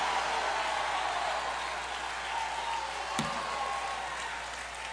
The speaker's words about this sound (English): Come on, take 30 good seconds. Clap your hands. Shout unto God, for the Lord hath given you the victory.